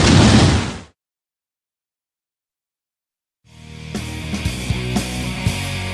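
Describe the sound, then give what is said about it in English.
A loud, roaring explosion of something blown up in a backyard bursts out and cuts off abruptly into silence, followed a few seconds later by a dense rumbling wash of noise with scattered sharp pops and crackles. No one speaks. “Come on, I got something cool to blow up in the backyard.”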